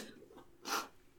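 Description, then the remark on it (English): A single short sneeze bursts out in a quick, breathy rush, fairly soft, with faint breathing before it and quiet afterward. “Sneezing again.”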